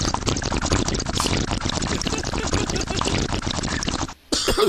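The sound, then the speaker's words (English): Loud, steady gurgling of water bubbling through a bong as a hit is drawn, continuous for about four seconds, then a brief break before the bubbling starts again. “I don't know if I can do the bong today.”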